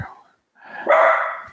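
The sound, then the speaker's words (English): A dog named Junkyard barks twice: a short bark, a brief pause, then a louder, longer bark that fills the second half. “Maybe he's alerting you to your delivery.”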